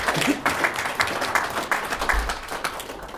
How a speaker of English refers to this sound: and we owe him another round of applause, has been rewarded for seeing that 30 years ago.